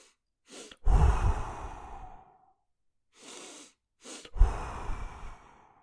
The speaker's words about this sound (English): An inhale. The first inhale is a little bit longer than the second. And then the exhale is extended.